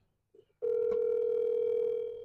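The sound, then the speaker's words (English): After a soft click, a steady electronic telephone ringback tone starts and holds unbroken for almost two seconds, loud, a single ringback burst on an outgoing call. “She's ringing.”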